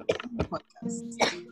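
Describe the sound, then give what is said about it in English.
A few short, harsh coughs, roughly three bursts with brief pauses between them, mixed with some throaty vocal sounds and a low hum. “Evil spirits, they are making me cough.”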